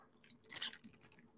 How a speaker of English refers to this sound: So I'm going to take a sip, and we're going to actually get started with this thing.